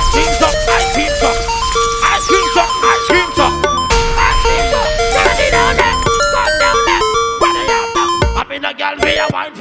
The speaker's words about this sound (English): Yeah, the ice cream truck, yeah. Ice cream truck.